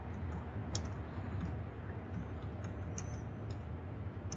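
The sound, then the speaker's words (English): Faint, scattered clicks on a computer keyboard tap out an irregular rhythm against a steady hum of background noise, with no one talking. “I can hear you typing.”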